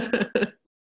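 Two quick bursts of coughing and throat clearing, one right after the other, followed by silence.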